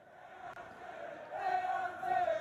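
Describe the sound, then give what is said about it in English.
A large crowd in a hockey arena chants and cheers together, a section standing up, just after an icing in the second period; the roar of many voices swells louder toward the end with sustained, rhythmic shouting. “But they're just like, the whole game, there's a section standing up and just chanting and cheering.”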